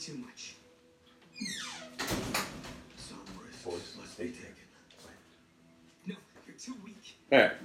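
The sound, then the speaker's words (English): A door slides open with a scraping rush as a dog is let out, followed by shuffling movement and muffled voices, then the door bumps shut with a solid thud near the end. “I'm going to let my dog out real quick because I think that might be the issue she's having, even though she's not sitting by the door.”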